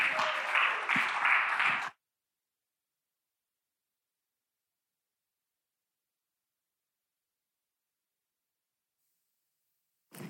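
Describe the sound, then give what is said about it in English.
An audience at the Disney campus claps and applauds in a dense, steady burst for about two seconds in the evening as the next speaker comes up, then it cuts off abruptly into silence, with a brief flicker of sound at the very end. “So would you guys all give a big round of applause as Melo comes on up?”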